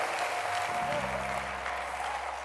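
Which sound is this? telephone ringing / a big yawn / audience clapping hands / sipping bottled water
audience clapping hands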